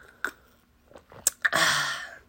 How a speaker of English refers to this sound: So, excuse me while I take a sip of my juice and apple juice. I'm drinking a little bit of the hair of the dog.